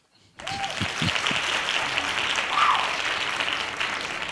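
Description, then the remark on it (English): After a brief moment of quiet, a crowd bursts into hand claps, a dense, steady wash of applause that stays loud and even until the end, with no talking. “My man, I'm being honest, hand claps.”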